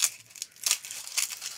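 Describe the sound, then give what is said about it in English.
Garlic being peeled for a shrimp tureen: a few soft, dry papery crinkles and tearing rustles, bright and hissy, coming in three short bursts with quiet gaps between them, with no voices. “Peel a little here.”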